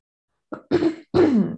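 Loud throat clearing: a brief catch followed by two rough, raspy bursts, each about a third of a second, with short pauses between and no talking.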